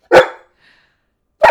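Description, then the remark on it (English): A dog barks twice, loud, the sharp barks separated by about a second of quiet with a faint, brief whine in between. “He just gets whinier every time you say bark.”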